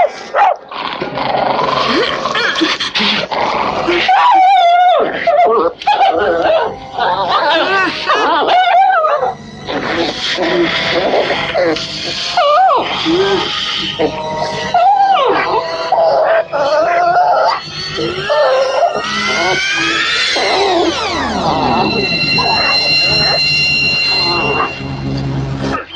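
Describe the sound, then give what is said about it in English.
A dog whines and yelps in distress as a man holds it up with one hand and strangles it in front of kids, its high, strained cries rising and sliding down in pitch, mixed with raised voices and noisy commotion throughout. “He fucking turns around, grabs the dog with one fucking hand, holds him up and just strangles him in front of all these kids, strangles him to fucking death and throws him on the ground.”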